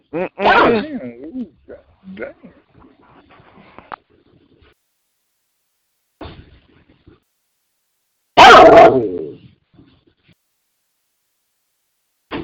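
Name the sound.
dog barking aggressively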